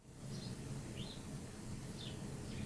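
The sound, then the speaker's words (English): A bird repeats the same short, high chirp about four times at uneven intervals, fairly faint over a steady low rumbling background. “You seem to be repeating yourself, Mr. Bird. It's the same noises over and over again.”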